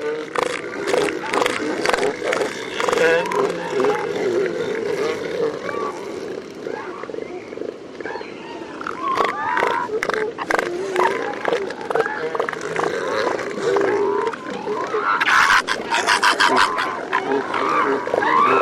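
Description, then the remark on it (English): A crowded elephant seal colony on San Miguel Island keeps up a continuous din of grunting, bleating calls from females and pups, punctuated by sharp flipper claps from bulls fending off other males, scattered throughout, with a quick cluster of claps near the end. “Females and pups call out while bulls clap their flippers to fend off other males.”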